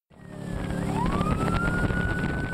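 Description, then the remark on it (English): A police siren rises in a steady wail over the loud, continuous roar of a wildlife police boat's engine speeding on the Columbia River, chasing a boat with illegal sturgeon on board, with no voices. “It's a high-speed pursuit in an unlikely place, the Columbia River. Wildlife cops are chasing a boat with illegal sturgeon on board.”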